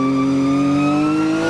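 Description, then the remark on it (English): A race car engine roars steadily and loudly at high revs as it laps the track, its pitch climbing slightly as it accelerates. Continuous, with no voices. “We're just watching, going around the stupid track.”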